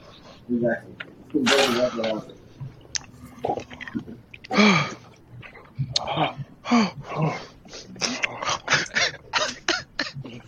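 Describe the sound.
Heavy, winded breathing after exertion: a run of loud, rapid panting breaths in a steady rhythm, mixed with gasps and bits of voice.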